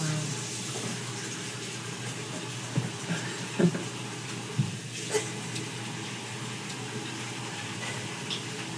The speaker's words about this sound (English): The water ran clean.